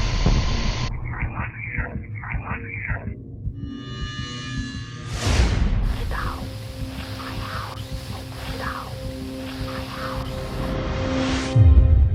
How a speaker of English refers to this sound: Electronic voice phenomenon, EVP, is the process by which the dead, through sound and image, communicate with the living through the static and white noise of modern electronic devices.